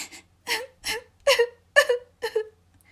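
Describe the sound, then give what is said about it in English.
The harp girl in the giant's house weeps in a series of six short, shaky sobs, each a breathy, high-pitched whimpering cry, coming in a steady, halting rhythm with brief silences between them. “Just as he was about to leave, he heard the sound of the harp girl weeping.”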